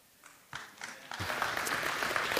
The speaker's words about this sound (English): Man, you know it's going to be a good day when there's applause just by the scripture being read. So that's great.